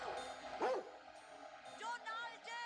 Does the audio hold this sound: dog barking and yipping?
yes